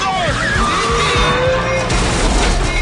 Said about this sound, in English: Explosion.